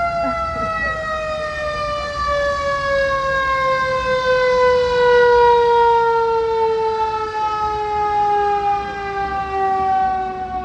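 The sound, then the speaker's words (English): A loud emergency siren wails continuously on the street during a lowrider cruise in San Diego, with people walking by, its pitch slowly sliding downward over several seconds, with a low background rumble of traffic and no one speaking. “You'll hear cars, lowriders, sirens.”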